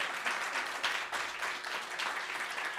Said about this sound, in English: So if you want to just have a quick look and then give our children a round of applause for telling the story so well.